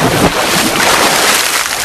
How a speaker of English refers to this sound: Look, here comes a boat. Really? Oh, it's about time.